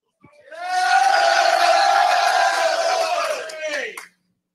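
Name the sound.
excited crowd cheering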